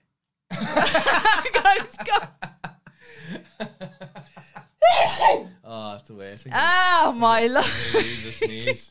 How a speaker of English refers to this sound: I want to sneeze.